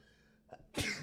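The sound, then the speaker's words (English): A single sneeze, fairly loud: a brief sharp intake of breath followed by an explosive, breathy burst, with no talking. “Sorry, I'm going to sneeze again.”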